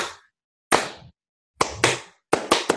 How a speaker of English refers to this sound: I hope that clap did not hurt your ears. If you were in headphones, I apologize.